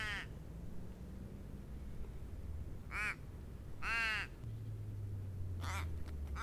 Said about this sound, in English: My Casuarina is full of crows